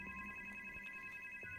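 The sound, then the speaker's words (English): A telephone rings for the third time with a steady, high electronic tone that holds through the whole short moment, fairly quiet and on its own with no voices. “Then the phone rang for a third time.”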